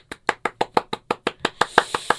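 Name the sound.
hand claps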